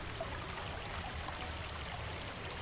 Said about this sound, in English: Oh, we're gonna go over the waterfall. Yeah. Oh, here is more water.